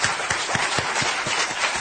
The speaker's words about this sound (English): That dream he just said was to reduce the world's population by 50%, and then people clapped that the dream was becoming a reality.